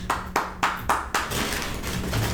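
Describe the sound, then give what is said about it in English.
A mobile phone rings in a quick, even series of five bright pulses, then the sound settles into a steadier, buzzing tone that carries on to the end. No one speaks. “Is it ringing? It is ringing.”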